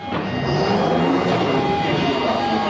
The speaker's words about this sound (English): This is Brixton, where this train terminates.